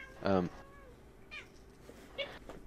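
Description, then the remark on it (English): A cat meows three times: one loud, drawn-out meow at the start, then two shorter, softer meows a second or so apart, over a faint background hum. “The cat disagrees, apparently.”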